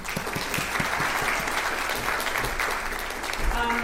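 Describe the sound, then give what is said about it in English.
An audience claps steadily throughout, a dense, crackling wash of many hands that holds at a fairly even loudness and swells slightly toward the end. “Great. Thanks, guys. We applaud them.”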